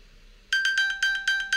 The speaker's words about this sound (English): I have my watch, which can find my phone. So I just constantly do that about 5 or 6 times a day.